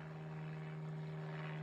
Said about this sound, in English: This is fucking unreal. Give it a second. I don't want to talk over a fucking airplane, God forbid.